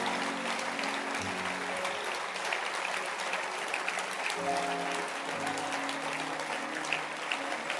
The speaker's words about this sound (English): Let's give a hand clap to God. And keep clapping.